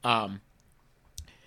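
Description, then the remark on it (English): A brief burst of voice gives way to near silence, broken by a faint tap and then one sharper keyboard click, like a few isolated keystrokes on a keyboard as ratings are typed up. “sorry, I'm typing up for our ratings to keep track of them.”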